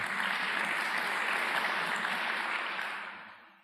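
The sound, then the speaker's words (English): An audience claps steadily, a dense and even wash of many hands lasting a few seconds before tapering off toward the end. No voices are heard. “I think it's better to hold the applause, to tell you the truth, because if you half like it, you can half applaud, and if you don't like it, you don't want to applaud, and there's a whole problem arises.”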